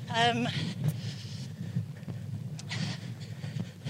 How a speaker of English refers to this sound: it's quite windy, isn't it? It's quite windy. I'm worried about the sound, I'll be honest, but it will create drama. People will believe that we're by the sea.